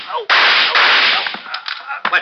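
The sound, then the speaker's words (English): A sharp, loud gunshot bursts out with a harsh, ringing crack, quickly followed by a second blast, then a few shorter, quieter snaps trail off. No one speaks. “I didn't know you had a gun, Rick.”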